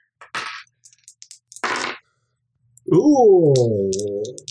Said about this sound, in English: Stop doing that. Stop rolling dice.